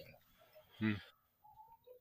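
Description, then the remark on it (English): A single short, sharp cough, breaking an otherwise quiet moment, with faint low murmuring before and after it. “Sorry, I usually get to mute before I cough.”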